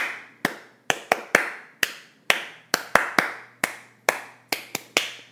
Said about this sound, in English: Let's try that one more time, and we're going to clap instead of saying the letters.